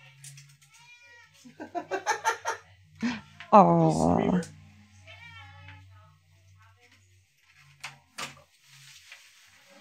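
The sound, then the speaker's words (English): A cat named Yoshimi lets out a couple of insistent meows, the second one loud and drawn out, while people talk quietly in the background. “So have you met my cat, Yoshimi?”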